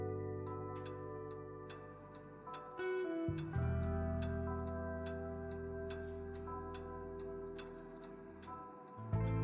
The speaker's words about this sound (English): Hey, grandfather Clock, not bad.